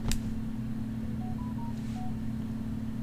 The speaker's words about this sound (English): What is that noise? Boo doo boo doo boo. Boo boo doo boo. Dance phone is ringing. That's me? I think. I thought it was you. Nope.